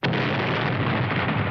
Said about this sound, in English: We've done quite a lot of explosions on Badlands, some rather large.